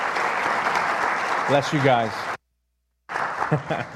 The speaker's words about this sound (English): Come on, give them a hand. Amen, for serving and blessing them. Amen. Thank you, guys.